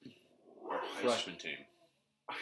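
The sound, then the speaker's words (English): A dog barks in a quick run of high, strained yelps, then goes quiet for a moment before another short burst starts. “I don't know why the dog's barking.”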